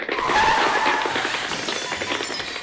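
A car swerves on a street in Pflugerville with a loud, sustained tire squeal, the screeching skid holding steady for a couple of seconds before easing off slightly at the end.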